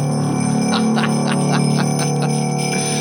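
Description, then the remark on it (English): Bells ringing in the New Year ring steadily and loudly, with repeated strikes every half second or so over a sustained, shimmering tone that fills the whole stretch, and no one speaking. “Let's ring in the new year. Here we go.”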